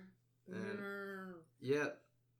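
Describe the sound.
A person imitates a cow mooing with one long, steady, droning moo followed by a shorter, rising second moo, both fairly loud.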